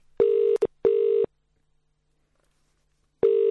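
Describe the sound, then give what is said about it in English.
Steady electronic telephone tones sound in loud, even bursts with a short keypad-like beep between the first two, then a pause before the tone returns. No one speaks. “Let me just phone her up and make sure it wasn't Donna.”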